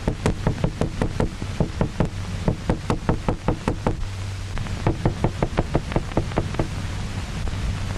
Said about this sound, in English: Isolated head even reacts to light and to sound. I slam a hammer onto a table.